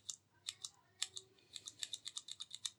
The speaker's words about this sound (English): As you can see, nowhere near as loud as the clicky keys, but it still has that little bump as I press down. If I press partly, I've not pressed it enough to get the bump. There, just got the bump, and that means I've actually depressed the keys.